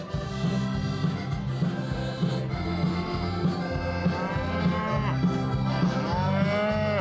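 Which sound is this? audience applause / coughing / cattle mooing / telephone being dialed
cattle mooing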